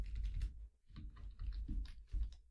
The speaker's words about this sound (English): The word quit is highlighted, so by pressing Enter, I will go back to the prompts and now scroll over to quit using the arrow keys and press Enter once to go back to the menus.